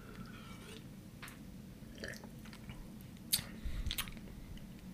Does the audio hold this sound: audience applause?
no